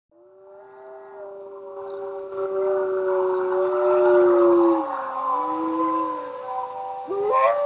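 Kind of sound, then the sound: animal, wolves howling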